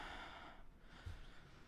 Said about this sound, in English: Hold on, I'm breathing. I vaped really hard. Oh, you went too hard to vape, dude?